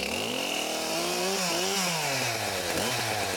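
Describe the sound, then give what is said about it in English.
A chainsaw runs loud, its engine pitch rising and falling as the throttle is revved and eased, with a steady buzzing whine throughout and no voices; it is fired up to carve a bird from a piece of wood. “I fired the chainsaw.”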